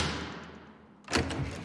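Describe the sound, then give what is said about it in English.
The door of a side room swings shut with one solid thud as two men close it, preceded by a soft whooshing rustle and followed by a short, dull reverberation. No one speaks. “he goes with Reb Nissan to a side room, and they close the door”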